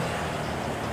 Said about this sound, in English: Motorcycle coming after me and bus coming for him.